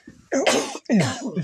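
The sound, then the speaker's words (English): Two harsh, forceful coughs in quick succession, loud, each a raspy burst with a throaty tail, part of a brief coughing fit with no talking. “Just talking about Davros makes me cough.”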